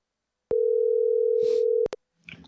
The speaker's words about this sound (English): Okay, that's a great sign right there. It's ringing.